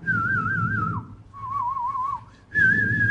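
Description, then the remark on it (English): Several shrill human whistles from kids call out in turn as a warning that an army jeep is coming. Each is a sustained wavering tone, the second lower in pitch, over a rumbling background, like signals passed from one whistler to the next. “And you hear all this whistling. A kid sees an army jeep, he starts whistling, another kid whistles, and everybody knows the jeep is coming, and they all scatter.”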